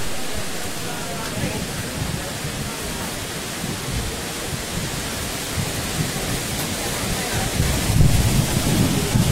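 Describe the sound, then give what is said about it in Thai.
Wind blows steadily across the microphone, only wind with no rain on a hot day, a constant broad rushing with low buffeting rumble that swells slightly louder near the end. “ลมมา”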